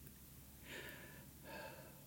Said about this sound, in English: That was me breathing while I was looking inside the mug.